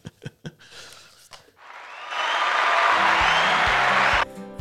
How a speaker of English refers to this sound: I'll hit that applause button on my way out.